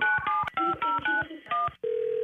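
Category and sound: signal or alarm, telephone number being dialed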